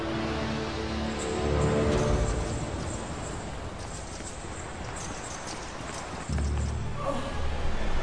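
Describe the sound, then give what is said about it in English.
Hooves clop steadily across a hollow wooden bridge, a rhythmic clatter of a billy goat's footsteps that carries on for several seconds with no one talking. “It's a billy goat. Can't cross that bridge.”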